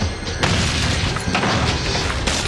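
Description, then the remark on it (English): A door is kicked open by police with a loud, heavy crash, followed by a dense, roaring wash of noise that stays loud for a couple of seconds without any talking. “Kicking the door open.”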